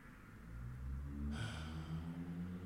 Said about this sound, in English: It involves a little bit of breathing. It's just taking a deep breath.